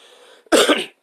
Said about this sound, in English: Sorry, I don't have the coronavirus, I just coughed, for those wondering.